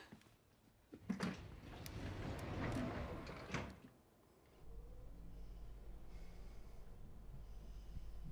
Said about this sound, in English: Did you just sniff me? No. No? No. Just, it's hay fever.